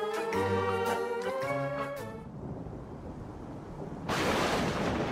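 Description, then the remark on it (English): A dramatic thunder sound effect: a rolling low rumble follows a brief tonal sting, then a sharp, loud crash of thunder bursts in near the end and keeps roaring. “The lightning has started!”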